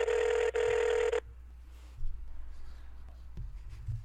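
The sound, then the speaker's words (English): A phone's ringing tone on the line: a loud, steady buzzing tone lasting just over a second with a brief break, then near silence with faint low rustles and thumps. “Let me give him a ring. Everything's gonna be fine. I know, dude, relax. All right, it's ringing.”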